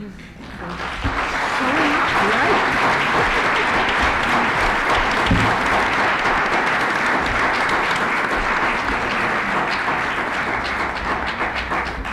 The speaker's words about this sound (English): We choreographed that deliberately so that there'd be one more round of applause.